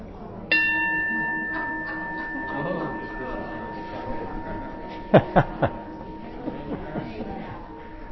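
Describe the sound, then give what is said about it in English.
A single bell is struck once to end a small-group discussion, its clear ringing tone lingering and slowly fading over the murmur of many people chatting, with a few sharp knocks later on. “For whom the bell tolls, the bell tolls for thee.”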